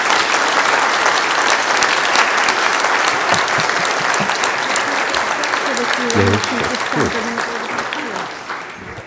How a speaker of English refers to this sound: Thank you very much. Don't they deserve a round of applause, everyone?